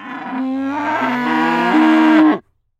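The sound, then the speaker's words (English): A single long, loud cow moo, rising slightly in pitch as it goes, lasting a little over two seconds before cutting off into silence. “Well, there is a sound that we all know and love. It is time for this week's Cattle Connect Fast Facts.”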